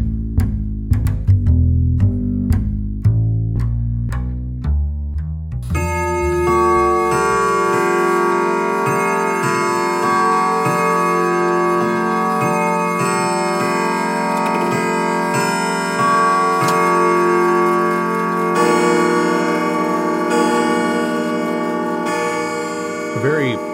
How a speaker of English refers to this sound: So turn out the lights, draw the shades, wrap up in your favorite blanket by the speaker, and listen for the 12 bells.